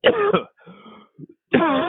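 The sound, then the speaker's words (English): A person coughs twice in sharp, harsh bursts, with a rough throat-clearing rasp and a short catch of breath between them, fairly loud, with some smoke in the air. “The air doesn't look very smoky, but I'm getting these coughs.”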